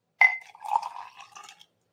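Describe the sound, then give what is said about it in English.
A short pour of pure Japanese matcha tea from a bowl into a glass, opening with a bright clink and followed by about a second and a half of splashing, gurgling flow that tapers off. Clear, with no talking. “And all I'm going to do is literally pour it right in.”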